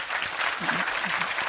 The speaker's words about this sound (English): And he's good now. And he's good today. Go on, clap your hands for him.